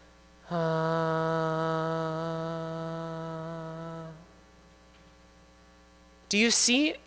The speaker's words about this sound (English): And so put your hand in front, and then we're going to inhale. And then when you exhale, hum, and just see the difference in how much air comes out.